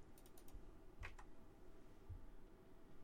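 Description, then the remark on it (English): Soft typing on a computer keyboard: a quick cluster of key clicks at the start, another short burst a moment later, then quiet room tone with faint low thumps. “You hear pecking? That's me typing.”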